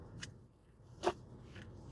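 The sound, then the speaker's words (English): A deck of tarot cards is being shuffled: three brief, papery snaps and rustles spaced unevenly over a quiet background, the middle one the sharpest and loudest, with no talking. “All right, let me shuffle one more time.”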